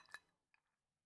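Two quick glass clinks, the first bright and ringing, the second softer about half a second later, like glasses touched together in a toast. Fairly quiet, with no talking.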